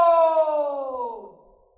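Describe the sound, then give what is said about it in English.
A single drawn-out shouted "Hello!" echoing back from a canyon, a voiced tone that starts strong, sags slightly in pitch and fades away over under two seconds. “It's an echo.”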